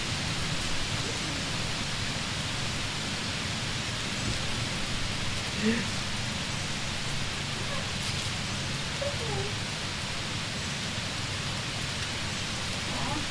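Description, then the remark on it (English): Heavy rain pours down steadily in a dense, loud hiss that fills the whole clip without letting up, with no voices present. “Oh my god, it's getting so fucking loud with the rain.”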